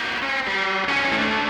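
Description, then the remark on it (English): An electric guitar with a bit of drive and no pedals, run through tape echo from a manually manipulated two-track tape machine, its sustained notes wobbling and bending in pitch as the repeats smear together, loud and continuous with no voices. “Well, a bit of drive, but then the tape echo, which pitches and warps right.”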